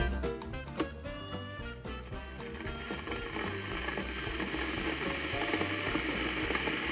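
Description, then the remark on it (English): A kettle boiling, with a steady rushing hiss over a low bubbling rumble that grows denser and more turbulent as it goes on, fairly loud, with no voices. “It's the sound of a kettle boiling.”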